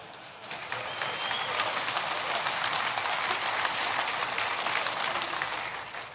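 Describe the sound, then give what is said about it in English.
A crowd applauds steadily for several seconds, dense overlapping claps forming a broad wash of sound that swells quickly and holds before tapering slightly at the end. “And I don't know why you're clapping.”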